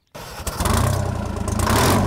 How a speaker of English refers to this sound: This here is a 1955 Super 99. It's also got a 371 Detroit diesel engine in it, which is kind of normally called the Screaming Jimmy because it does make a lot of noise.